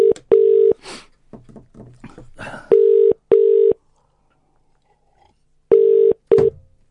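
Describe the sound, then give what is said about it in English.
A quick run of short dialing blips as a pub, the Three Tons, is phoned live on Talk Radio gives way to a loud, steady ringing tone in paired bursts, repeating twice over the phone line with silence in between. “I bet they don't even answer the phone.”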